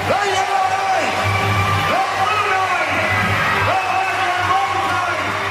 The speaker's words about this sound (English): And now let us raise a cheer for all our heroes!